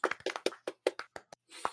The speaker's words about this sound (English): Pause for golf clap.